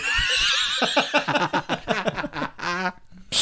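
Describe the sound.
A person imitates a horse's neigh: a loud, quavering whinny with a shaky vibrato, rising and falling over about three seconds before ending in a short breathy snort.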